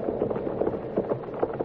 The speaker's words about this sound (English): What is it? Horses. A couple of horses coming in fast.